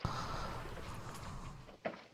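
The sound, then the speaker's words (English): A brief soft thud of a door closing lands near the end, over a steady hiss of room noise, with a faint knock at the very start. “Close the door.”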